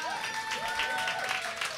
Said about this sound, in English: I was going to ask you all to stand up and to give a huge round of applause to our beautiful panelists.